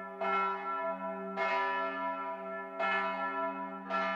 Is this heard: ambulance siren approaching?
no